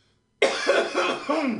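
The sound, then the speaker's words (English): A harsh coughing fit erupts after a brief silence, several raspy hacks running together with a throaty, strained quality. “Let me catch that cough.”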